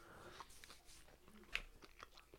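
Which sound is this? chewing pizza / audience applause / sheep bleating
chewing pizza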